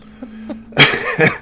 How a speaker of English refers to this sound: I like how you had to clear your throat to clap.